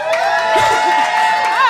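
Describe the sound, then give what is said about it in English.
A large live audience claps and cheers loudly, with whoops and shouts rising over a dense, continuous wash of applause that lasts the whole short moment. “By a round of applause, how many of you have ever listened to the show?”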